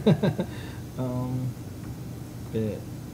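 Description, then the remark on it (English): A telephone rings twice, each ring a steady buzzing tone, the first about half a second long and the second briefer. A few quick vocal-like bursts come just before. “Okay, which is ringing twice. It's ringing twice. I gotta pick it up.”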